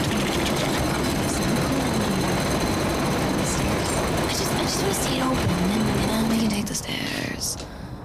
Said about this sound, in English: So I push the button. It's rattling as the elevator starts to lower. Oh, that sounds awesome.